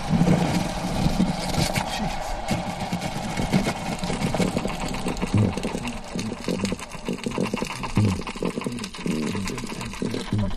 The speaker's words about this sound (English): He and his team prepare to launch an underwater microphone. The 3-inch device is already on as it hits the water, so it records the sounds as it plunges down.